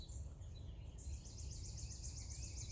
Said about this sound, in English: I don't know if you guys can hear that. I don't know if you can hear just the music of all the birds all around, the cardinals and every other bird that's just around us just singing this morning.